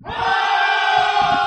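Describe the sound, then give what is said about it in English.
A big crowd of 90,000 roars and cheers, the shouting swelling up almost instantly and holding steady at full volume in a dense, continuous wall of voices. “if I may very briefly to our crowd of 90,000, just throw this out there. Thundercats!”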